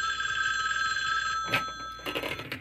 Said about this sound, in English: Once, when the phone rang, I grabbed it.